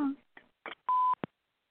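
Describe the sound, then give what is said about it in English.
The Wise Woman Center answering machine beep: a single steady, mid-pitched electronic tone lasting about a quarter second, preceded by brief fragments of a voice and followed by a short click. “So wait for the beep and leave a message or push start and send a fax.”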